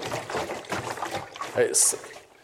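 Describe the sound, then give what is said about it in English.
Water sloshes and churns as a hand stirs it, ending in a brighter, sharper splash near the end. A voice murmurs faintly underneath the liquid sounds. “I can get hold of this and start to stir it or splash it. Stirring up the gift within. There's water.”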